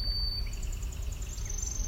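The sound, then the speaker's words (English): A kingfisher's chattering call as it comes by, a quick run of high, evenly spaced notes, fairly faint over a steady low rumble of background noise, with no talking. “That chattering is a kingfisher coming by.”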